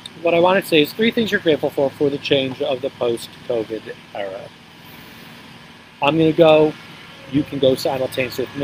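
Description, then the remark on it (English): A lawnmower mowing a lawn outdoors drones steadily and faintly in the background, a low continuous hum beneath people talking, most noticeable during a brief pause in the speech. “Oh, there's a lawnmower just coming up over here.”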